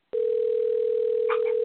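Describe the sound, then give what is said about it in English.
A telephone ringing out on a call to Tony Danza: a steady, continuous electronic ring tone heard through a phone line, starting abruptly and holding at an even level, with a faint murmur briefly underneath. “Well, it's just ringing out.”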